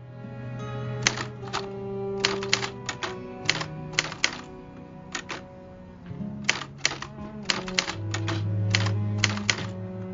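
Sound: typing on keys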